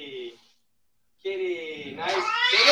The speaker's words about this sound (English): Is she afraid of the cat? Yeah, the cat's going to attack him.